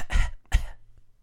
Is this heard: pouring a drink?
no